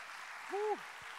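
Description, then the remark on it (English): An audience claps hands in a steady, dense wash of applause, while a single voice briefly rises and falls in a sustained tone partway through. “I need the sons and daughters to clap your hands like you know you're free.”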